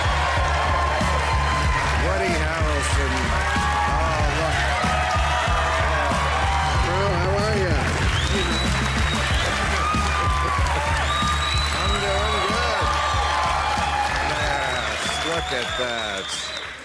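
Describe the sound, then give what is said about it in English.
A TV talk show studio audience cheers and applauds actor Woody Harrelson steadily for over fifteen seconds, with loud whoops and shouts rising above dense clapping, the roar staying strong until it tapers at the end. “Look at that. They're yelling at you.”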